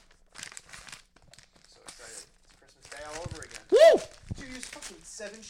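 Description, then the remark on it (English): Gift wrapping paper, seven sheets wrapped around a present, rips and crinkles in several short, scratchy bursts, followed by people talking over the rustling and one sharp, excited exclamation. “Seven sheets of wrapping paper?”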